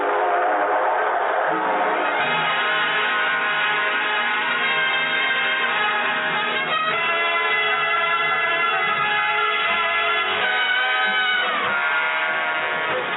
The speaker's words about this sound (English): All aboard! Well, dear friends, it looks as though we're ready to pull out.